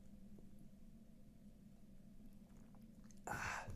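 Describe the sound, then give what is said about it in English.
A quiet, steady low hum gives way to a brief sipping sound near the end: a short, loud, breathy slurp, the first sip from a freshly opened Stone Cold Steve Austin lager. “So give me the 1 second to enjoy my Stone Cold Steve Austin lager here.”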